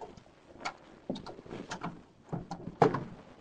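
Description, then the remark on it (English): A man unlocks and opens his car door with a key from a leather key case: a few sharp clicks and metallic clunks spaced irregularly, ending in a louder latch thunk, with no voices. “He unlocked and opened the car door.”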